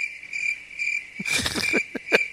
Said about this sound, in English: Crickets.